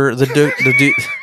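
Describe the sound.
A person mimics a donkey's bray with a quick run of loud, rhythmic voiced honks that break into a strained, rising squeal, lasting just over a second.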